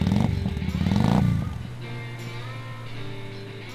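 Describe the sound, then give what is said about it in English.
A two-wheeled Harley motorcycle engine revs loudly with a deep, throaty roar, then drops back and settles into a steady, low idling rumble. “Talking about the Harley, when he told me, and I had heard from somebody else that he had bought this two-wheeled Harley from a neighbor, and I said, what on earth?”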